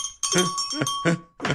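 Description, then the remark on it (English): A bright bell dings and its clear, high ringing tone holds steady for over a second, overlaid by several short, busy bursts of sound. “I believe you deserve that bell.”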